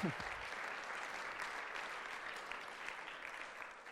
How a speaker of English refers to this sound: And I just set you up with that wonderful round of applause,